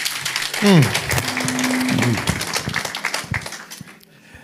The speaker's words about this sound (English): Man, give that man another round of applause, man. Check him out.